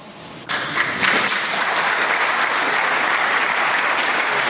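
A crowd bursts into a round of applause for a speaker saying in German that Russia must be treated decently, the dense clapping rising sharply after a quiet start and holding steady and loud for several seconds with no speech.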